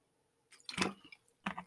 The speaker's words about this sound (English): I'm gonna take a sip.